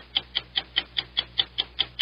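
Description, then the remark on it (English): A game clock ticks steadily, about five sharp, bright ticks per second in an even rhythm, moderately loud, with no voices; a 45-second countdown during a sports trivia quiz round. “45 seconds on the clock, and you're on your way.”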